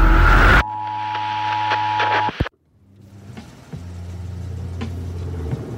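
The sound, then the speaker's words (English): A police car's engine idles with a steady low rumble, after a brief burst of sound and an electronic hum cut off abruptly into a moment of silence as the power goes out. “It's a cop car.”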